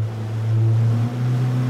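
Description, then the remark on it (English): A boat engine drones steadily with a low, continuous hum, water and wind rushing around it, fairly loud with a slight dip partway through, as the boat crosses San Francisco Bay toward the old naval shipyard at Bayview Hunters Point. “showing me the old naval shipyard from a boat on the bay”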